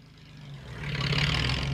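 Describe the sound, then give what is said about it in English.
Pickup trucks loaded with freshly cut firewood growl low and steady, then swell louder as they rev and labor up a steep road in a small mountain town in Veracruz, Mexico; a continuous rumble with no voices. “Pickup trucks loaded with freshly cut firewood gunned up the steep road”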